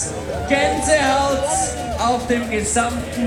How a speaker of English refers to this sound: Big crowds around him right now, right at the finish line. He's carrying the Kenyan flag right by the finish. Everyone's cheering.